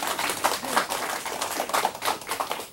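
An audience applauds steadily to thank a teacher, a dense crackle of many hands clapping at once, holding an even, moderately loud level for a few seconds without a clear break.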